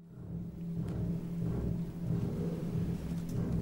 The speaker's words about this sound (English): The aria starts with this sort of very low bass chord, almost like thunder going off, repeated, sort of very low, and the double bass is in the piano.